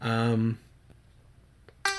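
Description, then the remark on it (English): A timer beeps with a bright, buzzy electronic tone: one loud beep lasting about half a second, a pause, then another beep starting. No one talks. “Timer's done.”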